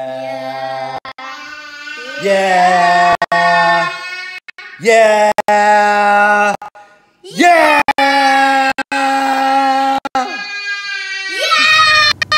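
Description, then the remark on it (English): Children yell and shriek loudly into a sound-reactive light-up necklace that glows brighter the louder they are, in several sustained, high-pitched bursts, one after another with brief gaps and no other sounds. “It is a screaming necklace, so the louder it is, the more it lights up.”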